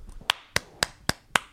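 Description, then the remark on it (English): Five crisp hand claps in a steady, even rhythm, each a sharp bright smack with a quick decay, heard alone with no talking, applauding the news that Lewis Hamilton has been named a Brazilian citizen. “So, applause to that.”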